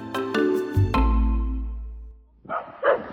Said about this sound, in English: What a good guard dog. Oh, that's why she's barking at me. No treats.